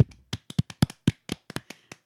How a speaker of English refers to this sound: Everybody clap.